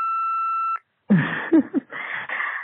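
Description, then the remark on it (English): A steady electronic answering machine beep in a studio holds one high tone for under a second, then cuts off; after a brief silence a voice begins talking over a muffled phone-line hiss. “Here's the beep.”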